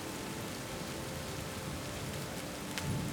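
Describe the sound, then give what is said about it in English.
Heavy rain pours down in a dense, steady hiss, with a brief low rumble of thunder rising near the end. No voices. “Okay, so as the rain continues to pour, and just for the sake of ambience, you begin to hear thunder. As the rain falls pretty hard, and the late afternoon comes upon.”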